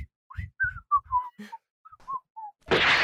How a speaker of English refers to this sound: just whistles and steps back a little bit, just like...